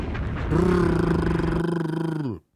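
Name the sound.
helicopter sound effect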